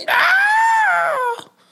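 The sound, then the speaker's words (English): A person imitates a woman's terrifying shriek: one loud, high-pitched sustained wail lasting over a second, holding steady and then cutting off abruptly, followed by near silence. “Or a woman's, or they hear like, or maybe like a woman's terrifying shriek.”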